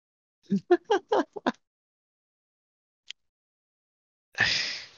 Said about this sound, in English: Whew, talking to someone is making me yawn.